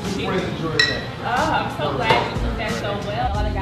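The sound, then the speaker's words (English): Two friends clink their drinking glasses together in a toast, a bright ringing tap or two over a steady murmur of voices and background clatter. “We just two friends enjoying a drink, right? Right. Cool. Cheers, then.”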